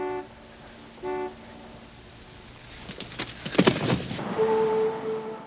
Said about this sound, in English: And then all of a sudden, a nice classic car comes pulling up the deserted street, all mystical.